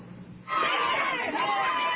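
A crowd of young teenagers, Shepherd Junior High students at their school, chatters loudly at once, a dense jumble of overlapping voices with a few higher shouts, swelling in after a quieter murmured start.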